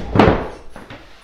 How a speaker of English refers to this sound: Squeakiest chair. Always at the start of the show.